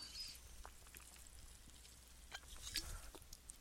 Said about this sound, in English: Let me take a quick sip here.